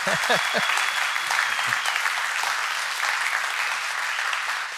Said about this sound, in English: Let's try that again. If he's done that for you, can you put your hands together and give Jesus a clap?